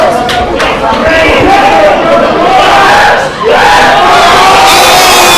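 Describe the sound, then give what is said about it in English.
A loud wrestling crowd roars and cheers steadily, a dense wash of shouting voices with a few higher whoops rising out of it and one brief dip partway through. “Did you hear the crowd? They are digging it here.”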